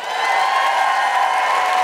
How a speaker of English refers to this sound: Big round of applause for Rachel Paris.